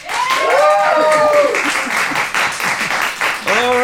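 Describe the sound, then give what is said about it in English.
A live audience claps loudly and steadily for several seconds, voting for a movie about a chess-playing frog, with a few voices whooping and cheering over the dense applause near the start and again at the end. “If you would like to see a movie about a chess-playing frog, please applaud now.”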